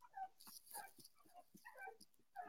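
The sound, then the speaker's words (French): A dog whimpers softly in a string of short, high-pitched whines and yips, fairly faint, with no one talking over it. “Eh oui, mon chien est retourné ici.”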